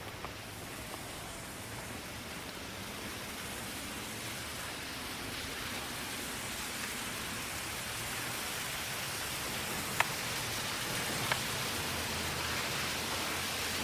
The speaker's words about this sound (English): Sounds like there's some water dripping down here.